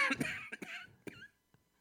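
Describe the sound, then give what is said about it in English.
A few quiet, rough coughs in a loose, irregular cluster, followed by a fainter short one after a brief pause. “I know you have a cough button. I can't believe you would do that.”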